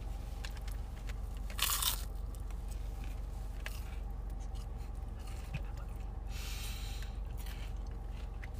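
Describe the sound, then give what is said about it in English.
Crunching as a crisp churro lightly dusted with cinnamon sugar is bitten, with a loud snap near the start followed by quieter chewing crunches over a steady low background hum. “Once again, here's that crunch for you.”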